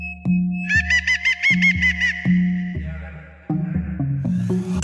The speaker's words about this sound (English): But also, if you listen to it, it goes... Doot, doot, doot, doot, doot, doot, doot, which is a darud, or the 28 parrot.